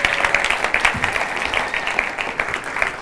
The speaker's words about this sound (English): So guys, if you come up, so you can give them a round of applause now, just encourage them.